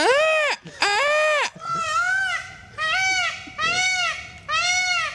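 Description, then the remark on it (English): A person mimics a peacock's call to a peacock that has turned up, giving about six loud, nasal, high-pitched wails in quick succession, each one bending up and then down in pitch, with no other talking. “Yeah, you're peacock whisperer.”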